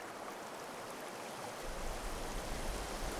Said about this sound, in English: this rock ramp is good not just for fish, but for the health of the river itself. It allows the water to flow downhill more gradually, rather than crashing down onto the downstream side as it used to, scouring the river bottom.